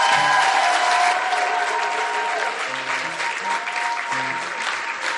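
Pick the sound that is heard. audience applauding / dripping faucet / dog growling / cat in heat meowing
audience applauding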